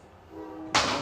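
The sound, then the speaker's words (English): A loud train passing: a steady, droning horn-like tone swells, then breaks into a sudden, broad rushing roar. No one speaks. “This train is loud.”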